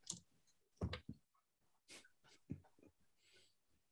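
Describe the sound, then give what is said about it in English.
Dice rattle and clatter across a surface in a few quick bursts of sharp, irregular clicks, fairly quiet, with no one talking, as a player rolls dice for a game move, coming up 10. “So let's hope we do good on this roll. I'm gonna get my good dice.”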